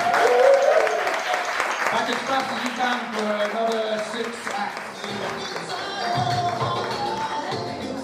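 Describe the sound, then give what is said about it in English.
An audience applauds steadily for several seconds in a round of applause for the teams, a dense wash of many hands clapping at once, fairly loud, with scattered voices and cheers rising through it. “Okay, quick round of applause for all the actual teams of us.”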